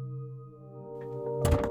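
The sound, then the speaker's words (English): A door shuts with a single dull, heavy thud near the end, heard over a steady, sustained low musical drone that plays throughout. “The door closed, and Lena was glad to be alone once again.”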